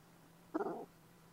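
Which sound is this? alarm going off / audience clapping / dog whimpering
dog whimpering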